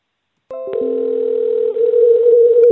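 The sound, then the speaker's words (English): A telephone ring sounds as a steady, loud electronic tone with a few clicks at the start, then turns rougher and wavering in its second half before cutting off. Nobody speaks. “Whoa, that ring got crazy.”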